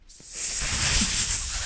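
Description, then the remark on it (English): A person imitates a snake with one long, loud, sustained hiss, lasting well over a second without a break. “And I try to do the meanest snake.”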